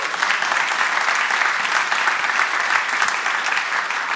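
An audience at a church worship gathering gives a steady, dense round of applause for a speaker called up to share, many hands blending into a bright, even wash of sound that holds at a constant level throughout, with no talking.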